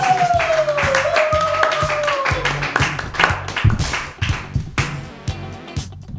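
An audience at a stand-up comedy show claps in quick, steady bursts of sharp hand claps for the next comedian coming on, loud and continuous, with a rising tonal whistle-like sound over the first few seconds.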